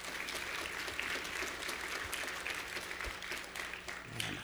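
A church audience claps steadily for several seconds to welcome a new baby, a dense, even wash of many hands applauding, with a low hum underneath and a faint voice emerging at the very end.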